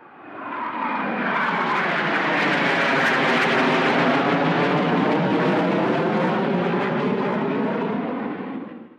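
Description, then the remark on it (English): A wartime fighter plane flown off an aircraft carrier: its engine roars loud as it passes overhead, a dense rumbling drone with a shifting pitch that swells in, holds steady for several seconds, then eases off. No voices. “His job was to fly airplanes off huge ships called aircraft carriers.”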